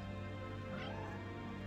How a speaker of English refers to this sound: The steps themselves were overflowing with cats. And the noise! She could barely comprehend what she was hearing. Her mind tried to separate out the different sounds, but gave up.